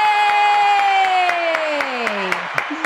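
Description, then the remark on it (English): Steady applause welcoming a guest, with scattered sharp claps, under a long sustained cheer or whoop that slowly slides downward in pitch before fading near the end. “Oh, I love the applause.”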